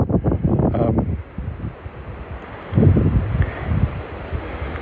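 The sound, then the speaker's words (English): Gusty wind buffets the microphone, producing a loud, low rumbling roar that surges in uneven bursts, easing briefly in the middle before swelling again, with no voices present. “It's quite windy. It's quite windy, I hope. Can you stop being windy, please?”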